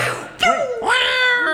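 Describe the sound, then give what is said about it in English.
A cat screeches loudly, a short shrill cry breaking into a longer, wavering yowl that holds to the end, with no talking around it. “She might have ricocheted a little fire into that lazy cat, too, didn't it?”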